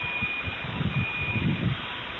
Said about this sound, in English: And there's the explosion. Now we're listening to all the sirens that are going off.